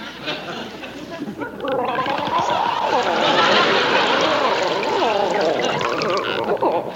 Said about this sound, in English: Please, Jimmy, squeeze the water out of me